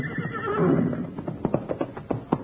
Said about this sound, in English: Now, if that ain't the smartest horse on 4 feet. He sure is.